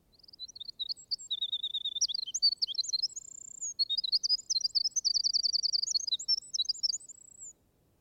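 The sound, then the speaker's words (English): A ruby-crowned kinglet sings a rapid, high-pitched, tumbling song of thin notes and fast repeated trills, bright and continuous for several seconds with a brief pause midway, no voices present. “Wilson called the kinglets wrens, but they have little to justify the name, except that the Ruby Crown's song is of the same gushing lyrical character as that referred to above.”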